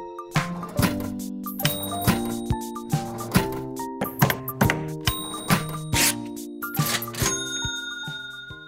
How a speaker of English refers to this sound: Casey, can we go out on a cash register ring?